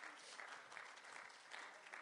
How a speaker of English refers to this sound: Could you give the Lord a hand clap of praise this morning?